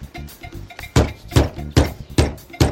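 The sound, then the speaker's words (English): Knuckles rap on the hood of a sports car whose body is made of 100 pounds of cannabis hemp, on Jay Leno's car show: a few light taps, then five solid, hollow knocks in a loose, uneven rhythm, each sharp and resonant, with no voices over them. “Bang on the hood.”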